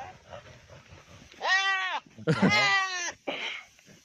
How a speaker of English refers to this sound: And I need a lot of volume and this is going to be very loud and potentially uncomfortable. But goats are dirty fucking fighters. So look at these fucking goats going at it.